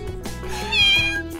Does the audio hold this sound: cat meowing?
yes